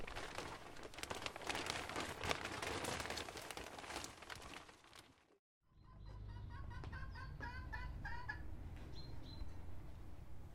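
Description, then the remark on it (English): A laying hen, Little Red, clucks in a quick series of short, mid-pitched notes, letting it be known she may lay another egg, following a stretch of loud rustling, crinkling noise and a brief pause, with a steady low rumble underneath. “So you might be able to hear in the background, this is Little Red. Last month she started laying, didn't you?”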